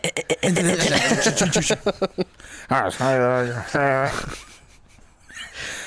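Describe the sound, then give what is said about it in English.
A voice imitates a diving World War II warplane getting shot out of the sky: rapid sputtering bursts give way to a loud, wavering whine that slides downward in pitch, then the effect trails off into quiet. “It is like a World War II plane getting shot out of the sky.”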